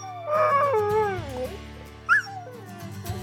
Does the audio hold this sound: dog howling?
yes